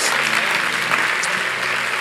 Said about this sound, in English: Jesus has already done his part. Yeah, we can clap for him all day, every day.